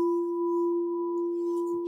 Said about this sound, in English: This striker is not a gong, but when this striker hits the gong, something else happens.